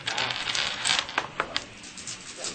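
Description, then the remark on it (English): A handful of ten dice, rolled for a dexterity stealth roll, clatter and rattle across a hard tabletop, a rapid burst of sharp clicks and taps that settles into a few scattered knocks, with no voices. “Why don't you make a dexterity stealth roll to try to follow him? I need more. How many dice are we talking here? Ten.”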